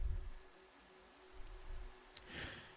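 Soft, steady rain hisses faintly throughout, with low rumbling underneath and a brief swell of brighter splashing noise near the end. No one speaks.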